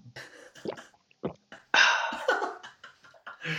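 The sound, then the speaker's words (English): Someone takes a sip from a drink and swallows, with a few soft wet clicks and gulps around a longer, louder slurping rush of liquid in the middle. “I'm just gonna have a sip on this lovely.”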